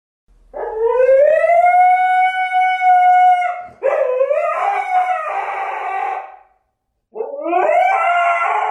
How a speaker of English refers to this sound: You need to find a husky video and just play the scream.